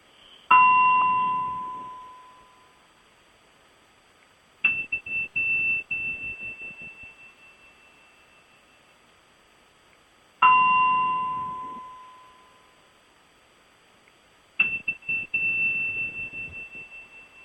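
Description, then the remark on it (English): Four loud Tibetan bell chimes ring out alone, each a sharp struck tone with a long ringing decay, arriving in two pairs spaced a few seconds apart. “Okay, so I'm back, and hopefully you heard some bells in there.”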